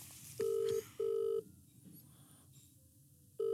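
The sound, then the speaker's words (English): A phone call on speakerphone rings, the ringing tone sounding in a double burst, two short tones close together, then a pause before the next ring begins, heard over a low background rumble with no one talking. “We're going to ring him live. I'm going to ring Timothy. I'm going to put him on speaker”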